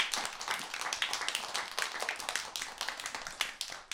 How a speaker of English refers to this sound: Wow, I gotta clap for that.